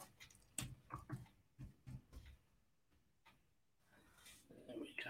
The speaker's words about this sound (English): You can't see me feverishly typing away because I blocked it off. Thankfully, trying to make sure I get the spellings right.